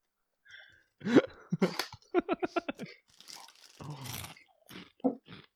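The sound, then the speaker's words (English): Crunching and chewing of crisp salt and vinegar Monster Munch corn snacks, with a quick rhythmic run of loud bites followed by noisier, grinding chews and a few softer crunches, with no talking. “They're crunchier than I remember.”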